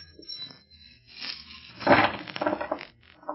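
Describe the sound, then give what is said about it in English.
A jumble of coins poured from a sack spills and clatters onto a table in a cabin, starting with a few scattered clinks, then swelling into a dense rattling pour before trailing off into loose jingles. “Now, pour down on the table.”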